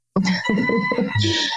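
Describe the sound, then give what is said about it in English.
A short, loud burst of barnyard fowl: chickens clucking in quick pulses while a rooster's strained, drawn-out crow rings over them, with no one talking. “And now here I am just like covered in chickens.”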